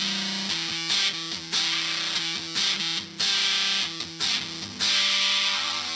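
A heavily distorted electric guitar, a model nicknamed the Flying Samurai, strums a series of chords, each ringing out for about a second before the next hits, loud with no talking.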